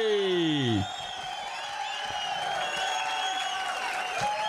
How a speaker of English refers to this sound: Is that it? That's a big crowd. Yeah. Oh, that's all our listeners are standing out here in the lobby.